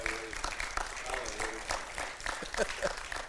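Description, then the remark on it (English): An audience claps steadily for a few seconds, a dense patter of many hands at moderate volume, with scattered voices calling out over the applause. “Put your hands together if you still love me today.”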